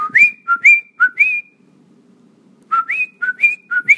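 Someone whistles a short ringtone-style tune, a special ringtone for a girlfriend's calls: two quick phrases of about four bright, chirpy notes each, rising and dipping in pitch, separated by a brief pause. No talking.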